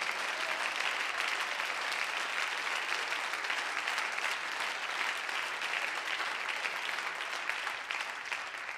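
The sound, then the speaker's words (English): An audience claps to the Lord steadily for about nine seconds, a dense, even wash of many hands with no talking and no letup in loudness. “Come on, someone clap to the Lord.”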